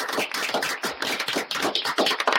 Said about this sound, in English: We'll just give her a round of applause, too.